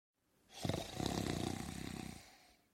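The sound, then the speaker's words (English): A man's single long, rattling snore, loud, with a rough vibrating texture lasting about two seconds before fading out. No talking. “He has a history of snoring and gasping at night.”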